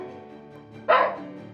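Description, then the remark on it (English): A single sharp bark, loud and short, from a dog that has been waiting for a bit of muffin, after a moment of quiet low-level background hum. “And it's a story of a dog who has been patiently waiting for a bit of muffin.”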